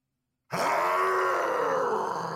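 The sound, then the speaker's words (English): A loud, deep booming call that mixes a howl with a growl, coming from somewhere up ahead in a gloomy forest, starting abruptly after a brief silence and holding steady with a rough, sustained tone for about two seconds. “A loud, deep sound booms somewhere up ahead. It's a cross between a howl and a growl.”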